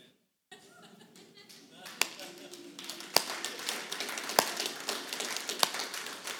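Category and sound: crowd, audience clapping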